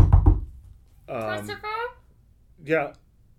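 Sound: knocking on a door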